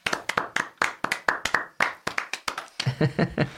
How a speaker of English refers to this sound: We're going to a big round of applause.